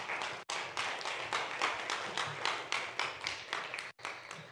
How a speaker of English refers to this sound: I agree with that cheering, that clapping.